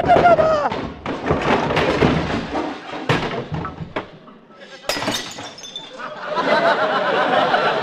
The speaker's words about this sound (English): Oh, no, I opened the wrong door and he fell down the cellar stairs.